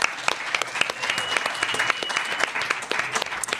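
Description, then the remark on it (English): A crowd claps steadily in a dense round of applause for Nuestras Raices, many hands producing a continuous patter of sharp bright claps at an even loudness throughout, with no one speaking. “So let's give a round of applause to Nuestras Raices for all their work.”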